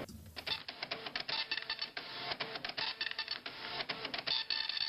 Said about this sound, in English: When our school first got a dot matrix like this, we thought it was so fast. It was just amazing.